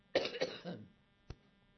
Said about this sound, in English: This cough is apparently going to be with me for the rest of my life. Excuse me.